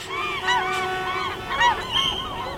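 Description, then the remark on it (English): Juvenile glaucous-winged gulls taking flight over downtown Seattle call repeatedly in a loose, overlapping series of harsh, rising-and-falling cries, over a steady background hum. “Just about now, juvenile glaucous-winged gulls are taking flight over downtown Seattle.”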